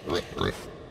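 Two quick pig oinks in succession, a short snorting grunt followed by a second nasal squeal-like grunt, then near quiet.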